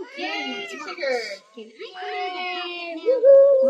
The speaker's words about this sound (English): I wanted one thing I want to say right now is the tweezle voices you're hearing is a mixed version of my kitty cat Tigger here.